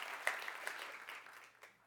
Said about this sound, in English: I like claps where we're all in. So culturally, from now on, how about if some clap, we all clap.